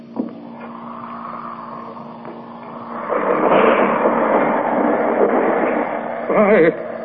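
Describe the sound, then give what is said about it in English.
A storm with thunder: after a few seconds of steady low droning, a broad, heavy rumble swells up and rolls on loudly to the end, with a sharper surge just before it finishes. “The storm is increasing again. It sounds almost as if the voice of the heavens is protesting.”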